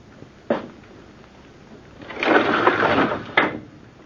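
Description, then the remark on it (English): A window is pushed open: a sharp knock, a pause, then a long wooden scraping slide ending in a solid thunk. Clear, with no voices. “Anything else you want of me besides opening this window, Uncle?”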